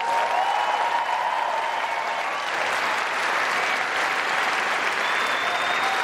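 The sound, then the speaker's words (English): Sustained applause from a large crowd for the teachers and educators, who are asked to stand, a dense, steady roar of clapping that holds at an even loudness for the full six seconds, with a few faint cheers or whistles riding on top. “Give our educators a round of applause.”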